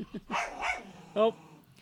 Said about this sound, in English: Uh-oh. I got a dog fight over here. Oh, really? Those your dogs? I thought that was mine.